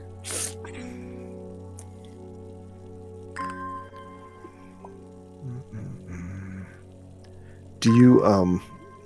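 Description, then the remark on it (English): Watering plants: brief splashy, dripping bursts, with a louder squishy spray near the end, set over a steady low humming tone and a murmur of background voices. “I'm going to water my plants and get some more will to explore.”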